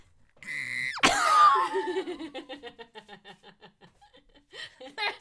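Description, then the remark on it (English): A high-pitched excited scream bursts out loudly, then breaks into a run of rapid, rhythmic laughing squeals that gradually fade before a brief final yelp. “Scream.”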